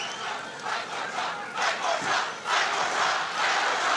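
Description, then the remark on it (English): A large crowd at a rally roars and chants in a sustained, dense wall of voices, swelling louder around the midpoint and staying loud to the end, with no single speaker standing out. “I don't know what they're cheering there.”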